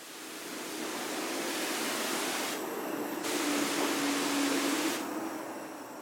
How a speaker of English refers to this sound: So when the Mary Rose came into dry dock number 3 in the historic dockyard, she was sprayed with water to keep her wet and stop her drying out. It was also cold water to stop any bacterial activity.